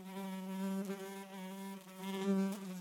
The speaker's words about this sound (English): Once upon a time, there was a tiny little gnat that buzzed around and around on a hot summer day until he needed to rest.